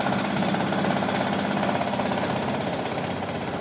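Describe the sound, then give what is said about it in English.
A jackhammer pounds away steadily at a construction site outside a window, its rapid, loud hammering continuous for the whole stretch, with no voices. “Construction site outside your window.”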